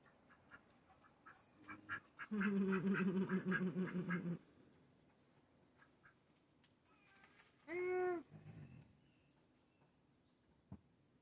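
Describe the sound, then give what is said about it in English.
Little ducks quack on a rug indoors: a loud, rapid run of raspy quacks lasting about two seconds, then a pause and one more strong, drawn-out quack, with faint clatter in between and no talking. “Hey, Stizzy, why don't you eat that little duck turd? I heard it's delicious.”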